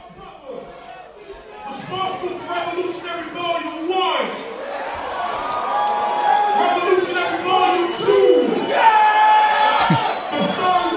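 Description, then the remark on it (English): A large concert crowd cheers and screams continuously and loudly, with individual shrill yells and whoops rising above the roar and the noise swelling toward the end. “The crowd very aggressive.”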